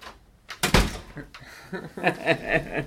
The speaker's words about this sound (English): Yeah, I have a door that I can shut. Look at this, and I'm gonna open it. Look how it sounds.